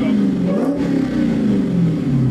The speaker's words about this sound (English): 350 is the best sounding car, factory non-supercar. No, it sounds very good. Very good. This is the best.